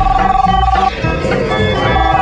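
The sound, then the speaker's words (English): A cell phone ringtone plays loudly and continuously for a couple of seconds, its steady electronic tones sitting over a dense, busy background of noise. “Always given away by the cell phone when the zombies come.”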